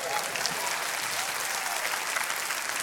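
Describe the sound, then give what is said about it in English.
An audience claps steadily to mark that the year 2016 is over, a dense, continuous wash of many hands that stays fairly loud and even for the whole stretch, with no voices rising above it. “Come on, can I give a hand clap?”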